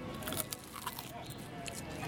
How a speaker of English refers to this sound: Oh, I'd love to hear some of that crunch in there. Why don't you bite into one for our ASMR listeners?